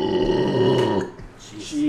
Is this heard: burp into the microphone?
yes